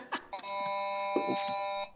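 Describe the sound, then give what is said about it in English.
A school bell rings in one steady, bright electric tone for about a second and a half, with brief bursts of voices before it and over it. “School bells.”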